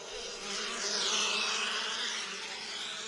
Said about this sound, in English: The boys raced inside. So did the bees.